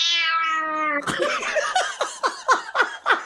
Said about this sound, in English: Like, I think he's biting her. And like, he's like, meow.